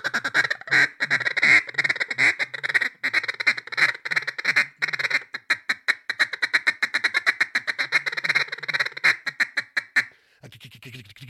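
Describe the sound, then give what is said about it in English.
A handheld duck call blows a steady run of loud, basic quacks. It starts in an even rhythm, then speeds into a rapid string of short, clipped notes before trailing off. “Then you can start adding quacks and lonesome hens and strings of greeters”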